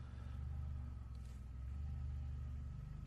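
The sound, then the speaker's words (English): A car engine rumbles steadily, its low drone swelling slightly as it revs, heard through a studio window left open because of the heat, with no voices over it. “I apologize for those listening on the podcast, and you just heard that engine sound.”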